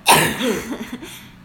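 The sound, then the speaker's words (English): A single sharp sneeze bursts out, followed by a brief breathy, voiced tail that trails off into quiet. “Sneeze. Bless you.”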